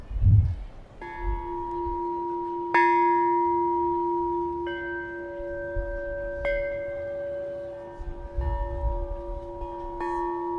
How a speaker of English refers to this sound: these bells are so beautiful. Thank you. So all the designs you see here are done by my technique of drawing with liquid steel. And you'll see that the sounds change.